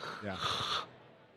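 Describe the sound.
A voice imitates the snoring of sleep apnea: one harsh, rasping snort-like breath of obstructed breathing lasting under a second, then it cuts off into near silence, the apnea pause with no airflow.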